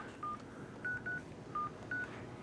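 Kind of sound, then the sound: signal or alarm, dialing a phone number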